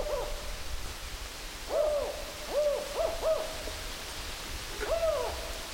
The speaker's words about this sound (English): And swiftly, a large shadow passes over us, and we can hear them, the pair of owls, talking to each other.